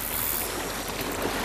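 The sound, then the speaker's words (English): A boat glides slowly through water filled with thick blood near orcas, making a steady, even wash of churning and lapping with no distinct splashes. It sounds continuous, and no one speaks. “This boat's been slowed down because the water is filled with thick blood.”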